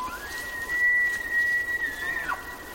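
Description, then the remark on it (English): Two male elk bugle in competing calls for female companions in a high meadow in Yellowstone National Park on an autumn evening. A long, high, whistle-like call holds steady for over a second, then bends downward at the end, with a fainter second tone running alongside over quiet background noise. “Jonathan Storm recorded these two male elk.”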